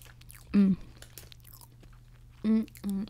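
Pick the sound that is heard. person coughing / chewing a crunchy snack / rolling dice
chewing a crunchy snack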